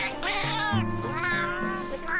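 A cat meows insistently, a run of drawn-out, wavering cries with rising and falling pitch that blend into one another over a couple of seconds, with no talking.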